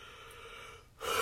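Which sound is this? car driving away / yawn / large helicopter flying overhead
yawn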